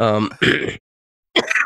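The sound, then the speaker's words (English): A man coughs: a short voiced rasp runs into a harsh burst, then after a brief silence a second rough cough follows, both loud and alone without talk. “I so rarely cough anymore.”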